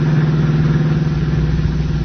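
car engine driving

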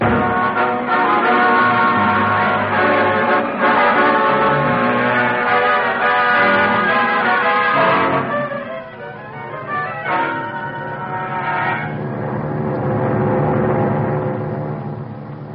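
bell ringing

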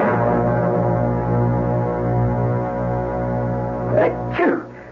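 sneezing

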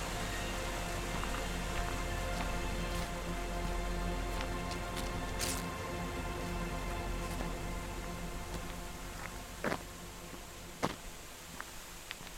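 rushing river water

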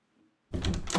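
door being opened

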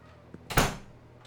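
door being pushed open

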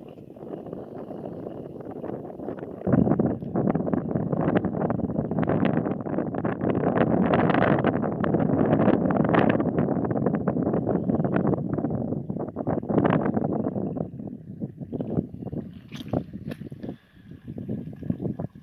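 wind blowing outdoors

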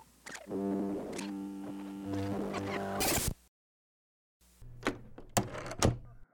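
door opening

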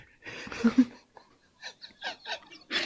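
parrot squawk

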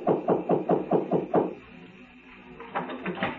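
knocking on a door

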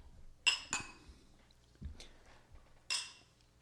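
glasses clinking

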